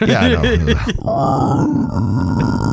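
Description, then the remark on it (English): A person imitates a pig, making loud, repeated guttural grunts and snorts in quick succession, then continuing with lower, rougher grunting for a couple of seconds. “So it'll just be pig noises the whole fucking time.”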